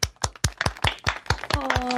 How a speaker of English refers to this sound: Also with us, and we have to welcome her back with sustained applause,